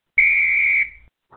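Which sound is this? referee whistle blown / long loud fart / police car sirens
referee whistle blown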